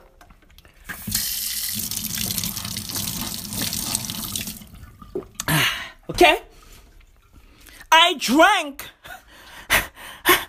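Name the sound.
person drinking water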